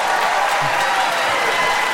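An audience claps steadily throughout, a dense, even wash of many hands with a faint murmur of crowd voices mixed in. The sound stays loud and constant from start to finish.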